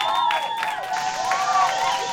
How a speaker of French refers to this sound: Et tout le monde applaudit. Bravo, bravo.